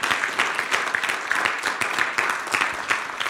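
An audience gives the Lord a round of applause, a dense, steady wash of many hands clapping at an even loudness throughout, with no voices rising above it.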